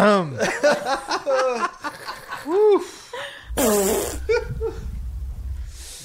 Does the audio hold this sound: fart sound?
yes